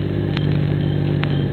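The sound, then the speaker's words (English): An armored truck's heavy engine rumbles steadily, a deep continuous drone with a couple of faint clanks, as it approaches and slows down at a barricade, with no voices. “Here comes the armored truck.”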